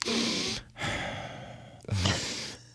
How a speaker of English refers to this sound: You hear them breathing because they're right up to the mic, and they have very sensitive mics because you got to pick up the noises.